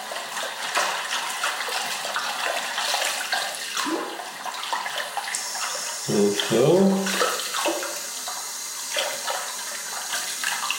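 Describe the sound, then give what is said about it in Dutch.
Water runs steadily from a tap into a washbasin, a continuous broad splashing hiss with gurgles and a brief pitch-rising burble midway, and a single short spoken word; the water is being run to examine seaweeds under water. “Het moet heel prozaïsch in de wastafel. Even wat water laten lopen.”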